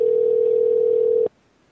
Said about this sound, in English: Should we just leave the phone ringing all through the show? It's happening again. This reminds me of calling up Hesh in the middle of the night and just, just let it ring. Just let it ring off the hook.